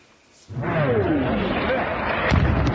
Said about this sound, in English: Air raid sirens and explosions shattered the peace today. In a conflict that will send shockwaves far beyond the battlefields of Ukraine, in the biggest attack on a European country in nearly 80 years.